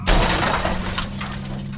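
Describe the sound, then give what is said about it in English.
Glass shatters with a loud, sharp crash, followed by a dense spray of tinkling, scattering fragments and a low rumble underneath for nearly two seconds. No voices are heard. “I woke up on the ground covered in tears and broken glass.”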